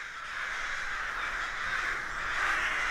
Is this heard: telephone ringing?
no